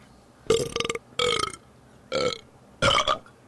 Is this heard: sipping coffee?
no